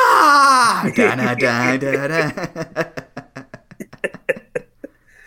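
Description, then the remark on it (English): Someone imitates Triple H's WrestleMania scream: a loud, strained, drawn-out yell that breaks into a run of short, rhythmic breathy bursts before fading out. “Or the Triple H WrestleMania scream.”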